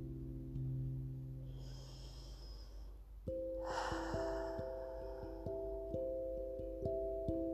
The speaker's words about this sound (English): And so we take in these truths with a thankful heart, softening our bellies, taking in a big, deep breath, and exhaling any stresses from anything before this moment.